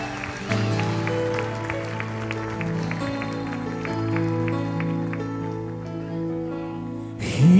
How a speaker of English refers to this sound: Come on, somebody clap your hands to the Lord.